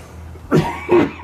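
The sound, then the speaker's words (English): Two quick, harsh coughs, the second following the first after a short pause, with no talking in between. “I mean, be coughing so much, but this has got me.”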